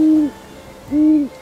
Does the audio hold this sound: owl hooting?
yes